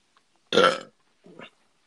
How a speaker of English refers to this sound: Excuse me. How can water make you burp like that? Yeah, it's mostly either water just or soda will make me do that. Yeah, basically, water will make me do that, and soda will make me do that.